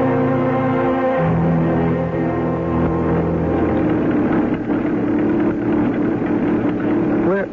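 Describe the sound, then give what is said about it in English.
A car engine runs steadily, a low droning hum with shifting tones as it idles and revs slightly, holding an even loudness throughout with no talking; a woman is driving the car. “Are you surprised to see a woman driving a car?”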